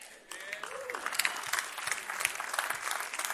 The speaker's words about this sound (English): We can amen that. We can clap that.